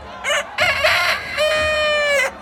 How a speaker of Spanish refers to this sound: Luego, canta el gallo por primera vez.